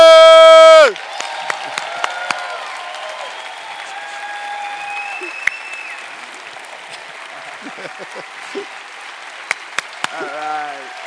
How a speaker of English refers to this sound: Let's give Big Ken a big round of applause.